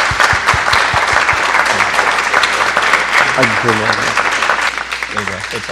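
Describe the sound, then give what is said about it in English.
Steady, dense audience applause at a church service, given for a man who had been up in front speaking, fills the whole stretch at a loud, even level, with a few low thumps early on and voices briefly rising over the clapping toward the end. “and I just want to ask you guys to give him a round of applause for being up here.”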